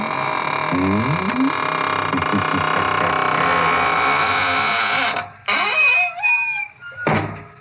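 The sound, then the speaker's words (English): A door creaks slowly shut with long, wavering squeaks and groans that rise and fall in pitch, ending in a dull thud, all over a steady droning background. “And now it's time to close the squeaking door, so good night.”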